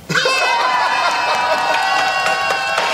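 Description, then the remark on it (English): In a live-action shot cut into a TV show, a crowd of children cheers and shouts together, loud and sustained, with shrill overlapping cries and a few bursts of clapping, continuous for about three seconds. “Oh, again, they cut to a live shot during the children cheering.”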